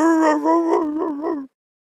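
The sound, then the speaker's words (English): A dog named Lily, in the back, gives one long, wavering howl-like cry, fairly loud, lasting about a second and a half before cutting off into silence. No one speaks. “She's actually in the back barking, but yes.”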